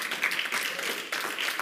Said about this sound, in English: That's good news. Y'all still missing it because you're not clapping hard enough.